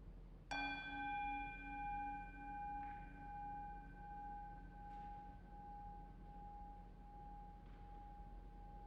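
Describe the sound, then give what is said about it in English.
A single strike of a meditation bell, rung to begin a time of reflection and meditation, bright and clear, its shimmering overtones humming and gently wavering as the tone rings on for several seconds and slowly fades. “May the sound of this bell call us deeper into a time of reflection and meditation.”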